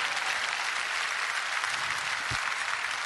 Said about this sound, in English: Somebody ought to give the Lord a clap offering.